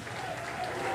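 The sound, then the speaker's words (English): A crowd at a Donald Trump event applauding and cheering the former president steadily, a dense wash of clapping with voices mixed in, holding at an even, fairly loud level throughout the short stretch. “They're cheering the former president on.”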